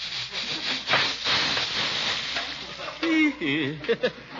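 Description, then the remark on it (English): A popcorn popper being shaken sizzles with a steady, rustling hiss for several seconds, the popcorn too old to pop, its noise thinning as a voice speaks briefly over it near the end. “I'm not putting the stuff in these poppers anymore.”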